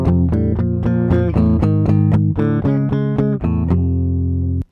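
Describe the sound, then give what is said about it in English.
Distorted electric guitar power chords, made of only the root and fifth with no third, strike in a quick, driving rhythm, about a dozen loud chugging hits, before a final chord rings out and sustains. No voices are heard. “It conveys strength and power, especially with distortion added.”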